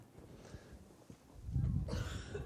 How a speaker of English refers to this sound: You're clearing your throat too.